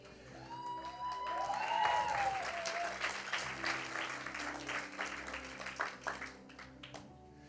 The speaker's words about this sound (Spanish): No hay aplauso allí, ¿verdad? Qué bueno que yo no vivo de aplausos y qué bueno que los niños se aplauden.